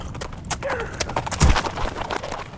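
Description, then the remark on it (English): Horse hooves clip-clop in a busy, uneven rhythm of sharp knocks on rocky ground, fairly loud, with a heavier thud midway through and a short high whinny early on, as an exhausted horse ridden hard nearly falls under its rider. “It's my horse. He practically fell from under me.”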